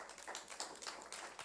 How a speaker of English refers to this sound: And I'm glad that you guys are here. So give yourselves a round of applause as well.